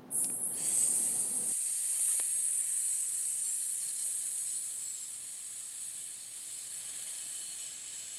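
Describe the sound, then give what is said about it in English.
A long, steady hissing exhale released after a breath in as a breathing exercise, bright and airy, holds for about eight seconds and slowly tapers off a little toward the end, with no talking over it. “And then you will release on a hissing sound.”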